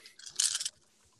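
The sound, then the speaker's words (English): A handful of dice rolled for long sword and divine smite damage in a tabletop game, rattling and clattering together in a quick, bright burst of overlapping clicks lasting about half a second, then falling quiet. No one speaks. “I have a handful of dice all of a sudden.”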